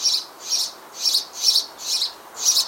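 House sparrows in a garden chirp steadily, six bright, clear calls in an even rhythm, moderately loud, with no voices or other sounds around them.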